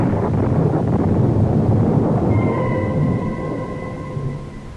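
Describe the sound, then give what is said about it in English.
A loud, steady thunderstorm roar with heavy low rumbling and gusting wind as clouds gather, just outside Hartford by the Connecticut River; midway through, faint sustained high tones creep in over the din. “But again the clouds are gathering and the storm is at my heels.”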